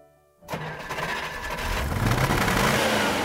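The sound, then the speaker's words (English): An old FedEx truck, used as a laundry pickup and delivery vehicle, cranks and turns over after a brief silence, then revs up into a steady, loud rumble that builds and holds, with no one talking. “We found an old FedEx truck that was for sale, and we bought that truck and painted our name, Easy Laundry, on the side of it.”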